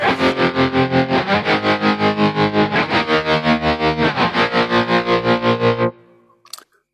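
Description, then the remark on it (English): A distorted electric guitar chord, set up to match a guitarist's sound for the Legends Tribute Collection with the tremolo placed behind the stack, rings out with a fast, steady tremolo pulsing its volume for about six seconds, then cuts off, followed by a brief faint scrape of string noise. “And yeah, I think we need a bit more gain, maybe the distortion.”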